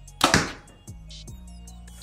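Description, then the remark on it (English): A compound bow set at 29 inches draw length, 72 pounds and 90% let-off fires a 687-grain arrow at 240 feet per second with one sharp, loud thwack, followed by a quick fading rattle and a low steady hum in an otherwise quiet space. “And now our big arrow, the 687 grain arrow.”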